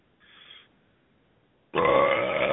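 A brief faint hiss is followed by a long, loud, raspy burp that starts abruptly and rumbles on for almost a second, low and throaty with no talking over it.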